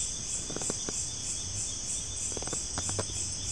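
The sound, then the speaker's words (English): A dense, steady chorus of crickets trills continuously at night, heard from a rooftop under a Bodhi tree, with short bursts of frog chirps popping in twice, in quick clusters. No voices. “The loudest sound is the crickets and the frogs.”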